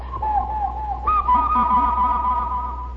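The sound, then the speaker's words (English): Imitation cuckoo calls whistled by mouth by kids in a school auditorium, sustained wavering tones with a second higher whistle joining partway, fairly loud over a steady low hum. “Cuckoo Whistle”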